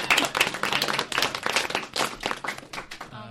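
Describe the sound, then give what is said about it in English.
A round of applause from a small group, with dense overlapping claps rising and falling steadily for a few seconds, fairly loud with no voices on top. “Round of applause.”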